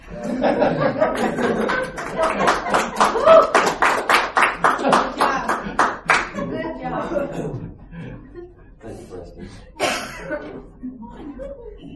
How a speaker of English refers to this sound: When people clap because you said I'm done.